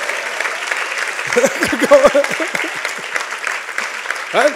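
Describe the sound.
An audience applauds with steady, dense clapping throughout, while a few voices call out and cheer over the noise before it fades slightly toward the end.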